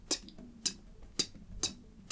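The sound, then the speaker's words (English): Steady, mechanical ticking of a bomb's timer: four crisp, evenly spaced ticks about half a second apart, fairly quiet, with a faint low hum underneath and no voices. “You hear a ticking sound coming from the bodies.”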